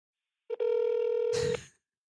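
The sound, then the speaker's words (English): A steady electronic phone ringing tone of a FaceTime audio call to an uncle sounds once for about a second, loud, broken by a tiny blip near its start and cut off by a short rustling click. “She's calling my uncle, who's obsessed with the gossip of the family.”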